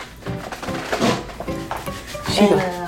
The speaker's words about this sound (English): Going to get you a chair that's not moving and talking. This is what we do, y'all. Sit tight. Okay. She rearranging furniture. Y'all hear that?